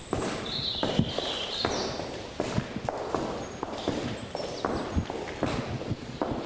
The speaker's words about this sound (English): Did you ever hear the sound of your own footsteps in this parlour before? No. Normally what you get in the milking parlour is the rhythm of the milking machine and the pulsation and the odd cow shuffling.